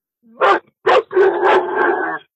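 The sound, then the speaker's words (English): A pet dog that has seen some friends barks: two sharp barks followed by a longer drawn-out bark that trails into a whiny, sustained yowl, loud with nothing else underneath. “I told you my dog would bark at some point.”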